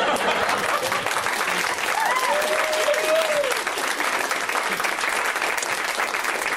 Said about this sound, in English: I've been great. You can clap for me.